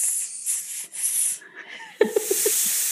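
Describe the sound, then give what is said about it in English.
A snake sound effect: loud, sharp hissing in several bursts, then a longer hiss with a quick run of four or five rattling clicks underneath. No one speaks. “I have to keep putting a snake sound effect.”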